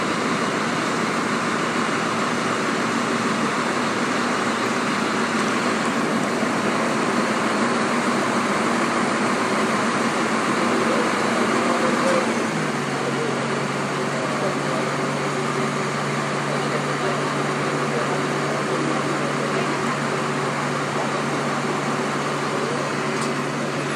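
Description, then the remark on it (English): A city bus idles at a roadside stop beside a narrow, crowded footpath, its engine giving a steady, loud rumble that drops into a lower, even drone about halfway through, with faint murmuring in the background. “I could have jumped on this bus and just headed to the bus station or whatever, it might not have even noticed the difference”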